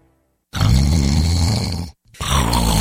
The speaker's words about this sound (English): Is this what your bedroom sounds like at night? What if you could stop the snoring instantly without nose strips, mouth guards, or a procedure?